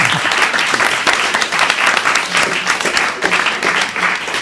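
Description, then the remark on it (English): A studio audience breaks into steady, sustained applause for a team competing for the Terminator Salvation Army, a dense wash of many hands clapping at once that stays loud and even throughout without letting up. “All right, a big round of applause for the Terminator Salvation Army.”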